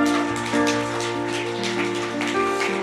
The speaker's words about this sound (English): Come on, somebody, let's clap our hands.